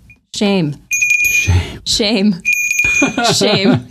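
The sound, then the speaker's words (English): A bell rings with bright, sustained high tones in two stretches, fairly loud, while voices talk and exclaim over it throughout. “Ooh, that's oh my God, there's a bell.”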